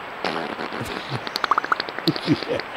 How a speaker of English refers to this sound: You can't find the Loch Ness Monster, but you got audio of a beaver farting. Of a beaver farting.